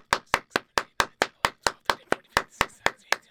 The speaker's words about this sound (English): How long do you think it would take to clap 50 times? I mean, probably 40 seconds. Right? You doing it right now. One, two.